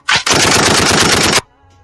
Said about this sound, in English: Yeah, I was talking about gunshot there.